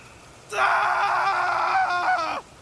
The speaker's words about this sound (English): Gabriel screams and continues to struggle. The hands drag him towards a tree.